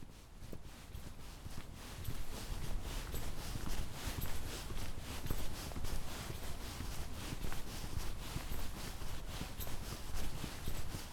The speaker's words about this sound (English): So we're just having a walk along now because we are on the lookout for some cattle that have been introduced to this reserve